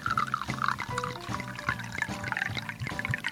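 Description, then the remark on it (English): A 7.5% Citra and Amarillo hopped beer pours steadily into a glass, a continuous gurgling, splashing stream with a rising fill sound, no voices over it. “So let's see how she pours.”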